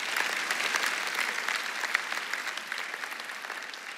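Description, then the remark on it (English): An audience breaks into steady applause, many hands clapping in a dense, continuous patter that holds at an even, moderate loudness for about four seconds with no one speaking. “You can clap, go ahead.”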